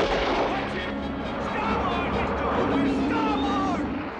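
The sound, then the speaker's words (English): A steady, roaring rush of noise, like air howling through a wind tunnel, fills about four seconds as the original great white shark sound effect from the 1975 film Jaws, with faint warbling tones sliding up and down within the roar. “So if you heard it, it's sort of like this, it really kind of has that faint roaring sound of a wind tunnel, kind of what Peter Benchley was describing.”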